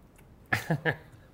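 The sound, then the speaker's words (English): Someone chews, making three short, moist mouth sounds in quick, even succession against a quiet background, with no talking. “I'm chewing.”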